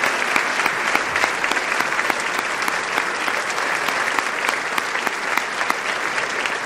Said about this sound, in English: Clap in the microphone, Mr. President.